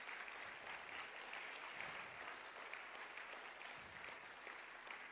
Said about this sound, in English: Come on, give them a clap. They've done so well.